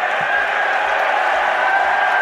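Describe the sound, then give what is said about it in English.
A large audience cheers and applauds in a loud, continuous roar, with steady low thumps repeating about every half second beneath the crowd noise. “Oh, see, they're cheering for cancel culture.”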